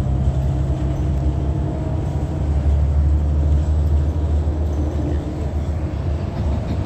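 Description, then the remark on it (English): Steady low rumble inside a moving city bus, a constant engine and road drone with faint tonal hum, loud and continuous throughout with no voices. “Yeah, we're approaching. This bus is being driven by also.”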